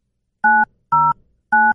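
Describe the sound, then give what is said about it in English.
Three crisp telephone keypad DTMF tones as a phone number is dialed to call someone, each a short steady dual-pitch beep, sounding at an uneven pace with brief silences between them, clear with no voices. “I know his phone number now because you just let it go out over the air.”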